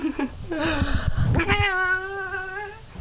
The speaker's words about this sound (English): That lovely sound you just heard was my cat crawling onto the microphone as I try and record this intro